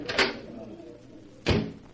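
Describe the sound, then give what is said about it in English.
A door onto a terrace opens with two short, solid clunks about a second apart, like a latch releasing and then the door swinging against its frame, over a low background hum. “Here, this door opens onto it.”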